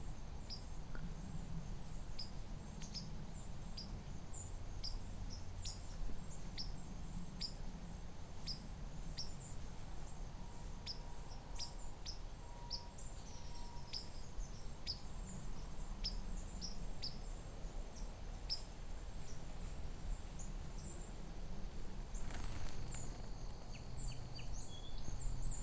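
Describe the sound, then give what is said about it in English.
Many short, high call notes, mostly of white-throated sparrows with a few song sparrows, tick and chip irregularly over a steady low rumble, several birds overlapping, with no voices present. “These are mostly white-throated sparrows, so there's a few song sparrows in here.”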